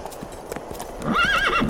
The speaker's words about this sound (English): It's the blood, you idiot. What? The horse. He's scared of the smell of blood.